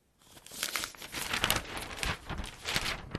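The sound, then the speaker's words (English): A newspaper page turns with a few seconds of crisp paper rustling and crinkling, coming in uneven bursts with no voices. “let's turn the page now in the paper and head across the Tasman Sea.”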